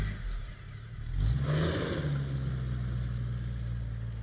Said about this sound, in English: Then in the distance, she heard a car's engine roar as it took off.